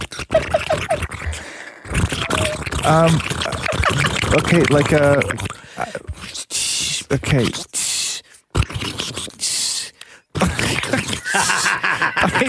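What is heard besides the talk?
water boiling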